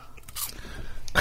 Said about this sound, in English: I can hear you going for the crunch there. It's sounding very crispy crunchy.